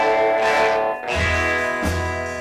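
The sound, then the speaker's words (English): A loud Danelectro electric guitar in a 1958 recording rings out through heavy, washy reverb, its sustained notes and strums blurring together, with a brief dip before the next burst; no voices. “He loved the Danelectros. It's mostly all he ever played. Yeah. And he used the reverb a lot.”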